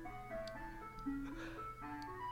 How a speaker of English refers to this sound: Oh, can you hear the ice cream truck outside? I can hear the ice cream truck. I wondered what it was.